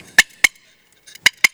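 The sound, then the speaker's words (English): A turkey box call cutting out four sharp, loud, raspy clucks in two quick pairs, mimicking an excited hen, with no talking. “That's an excited hen.”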